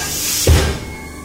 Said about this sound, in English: Doors open, Thane. Time to run.